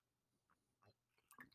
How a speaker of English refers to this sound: Sorry, I just needed a sip of water before I start this awesome list.